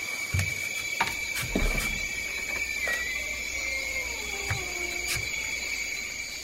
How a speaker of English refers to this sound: We being wicked just like them pharaohs, Ma, and the frogs are coming again, and they singing the praises of the Lord.